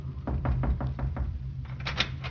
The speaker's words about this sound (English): knocked on the medical officer's door.